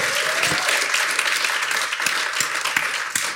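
Sustained audience applause, a dense steady wash of many hands clapping at once, loud and even throughout with scattered sharper claps poking through.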